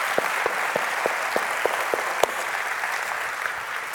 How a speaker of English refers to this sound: And can we just take a moment just to give them a round of applause for all they've done? Thank you.